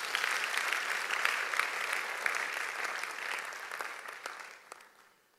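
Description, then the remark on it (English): A church audience claps for themselves in a dense, steady burst of applause that holds strong for several seconds, then thins and fades out toward the end. “Clap for yourself again.”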